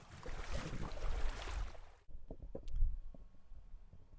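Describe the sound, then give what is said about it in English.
A boat heading to the next station for data collection surges through water with a loud, steady rush of spray and hull noise, then the rushing cuts off abruptly as the boat stops, leaving quieter lapping and a few low knocks. “So we've stopped wading through the water now. We've stopped. The boat is stopped.”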